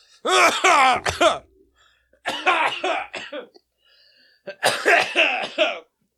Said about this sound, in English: God, eating and coughing is dangerous.